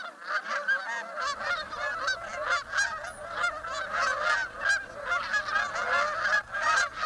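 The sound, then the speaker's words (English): A dense chorus of ducks calling over one another, continuous honking and quacking from many birds, with a low steady rumble underneath and no talking. “Ah, December, the perfect time to go to the beach. Not to swim or to just lie on the beach, of course, but to look at ducks.”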